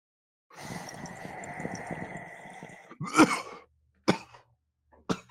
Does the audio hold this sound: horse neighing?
no